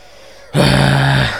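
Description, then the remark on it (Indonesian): A single deep, loud gasp for breath, sharp at its onset and held for under a second with a slightly voiced, rasping tone, with no talking. “Napas dulu, bro.”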